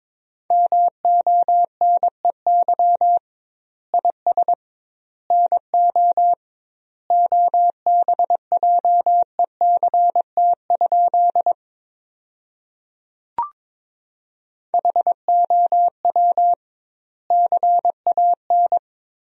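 Morse code sent at about 22 words per minute, spelling sentences built from the top 500 words with double word spacing: a steady mid-pitched tone keyed into quick dots and dashes, grouped into words with longer pauses between them and one brief click partway through.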